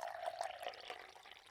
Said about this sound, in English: She moved quickly and began to pour from a calabash into two cups.